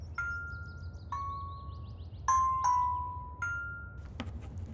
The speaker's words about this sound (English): But first, bells. Sounds better than the clanging from earlier.